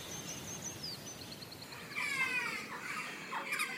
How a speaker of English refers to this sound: The first thing I do is open the window up here. It's like a whole symphony out there of bird song, bird call.